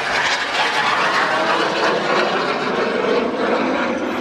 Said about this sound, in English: This is another jet flyby